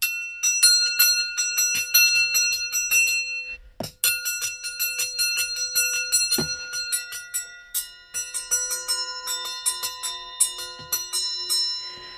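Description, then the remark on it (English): Pieces of found metal are struck in a quick, steady stream of hits, each ringing with bright, bell-like overtones that shimmer and overlap, with a brief pause partway through before the tapping resumes. “So different found metals, like this one.”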